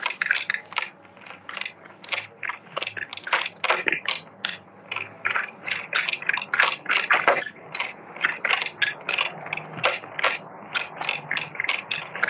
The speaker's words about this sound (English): There was 2 cards fell out as I was shuffling.